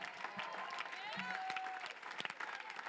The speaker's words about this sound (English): Come on, clap your hands right now unto God. Let that get in your spirit.